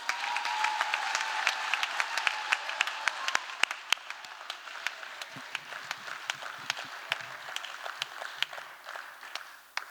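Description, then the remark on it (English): Audience applause fills the whole stretch: dense, steady clapping from many hands, with sharp individual claps popping out, gradually thinning slightly toward the end. No one speaks. “Just clapping.”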